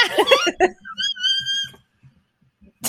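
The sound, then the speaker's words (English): A few short, piercing whistle-register vocal tones, thin and steady, rise up after a brief burst of voiced, laugh-like sounds, then fade into near silence. “That's me doing whistle tones.”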